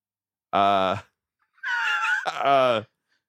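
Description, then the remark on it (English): A pet cat meows twice: a short, steady cry, then after a brief pause a longer, rougher call that rises and trails off. No one speaks. “There's a creature coming in there.”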